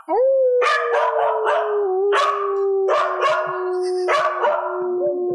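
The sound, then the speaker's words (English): A female dog named Sassy lets out a long, sustained howl, its pitch wavering and slowly sinking over several seconds, broken by repeated sharp yelping bursts layered on top. “Can you get her to howl AKA again?”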